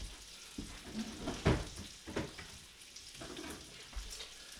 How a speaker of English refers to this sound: We got bacon frying in the background.